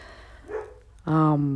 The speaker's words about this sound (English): Okay, you probably can hear dogs in the background. That's because I live with dogs and they love to bark. So I might pause it and come back.